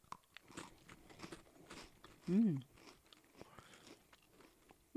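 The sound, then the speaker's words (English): Crunchy strawberry-smelling Pocky biscuit sticks being bitten and chewed, with a run of sharp, dry crackling crunches spread across the moment and a short hummed voice sound partway through. “They're a perfect little snack.”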